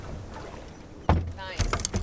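A heavy object lands with a solid thud, followed a moment later by a burst of clanking and clattering as gear settles, close by over a low outdoor background.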